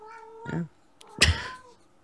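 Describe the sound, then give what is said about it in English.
A male cat lets out two loud, drawn-out meows in quick succession, the second one harsher and more strained, with faint background hum. “He's determined to ruin this podcast with every fibre of his little cat body. Listen to him.”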